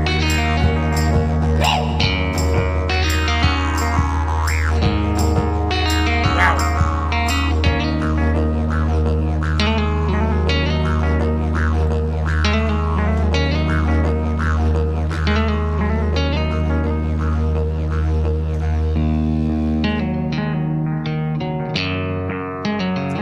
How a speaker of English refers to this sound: Is that what didgeridoo? It's a didgeridoo. He's playing a didgeridoo.